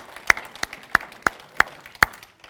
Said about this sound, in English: Would you give the Lord just a big clap and thank Him? Thank you, Jesus.